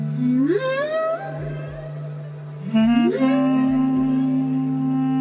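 Ambient whale-inspired music: long, swooping tones slide upward like whale calls over a steady low drone, with soft low thuds pulsing beneath, sustained and fairly loud with no voices.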